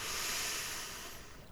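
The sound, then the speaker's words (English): A long, steady inhale through the nose during a guided relaxation breathing exercise, a soft airy hiss lasting over a second before tapering off, with no talking. “Okay, little frog, I want you to take a full breath in through your nose.”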